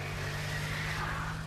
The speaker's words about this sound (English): he and Bo climb back into his truck, wave, and are off. Tires spinning on the slick, wet grass.